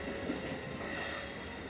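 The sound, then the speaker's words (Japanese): A tram runs on rails with a steady rumble, a continuous low drone and a faint metallic hum from wheels on track, with no talking. “電車に乗るのが好きなんですね。”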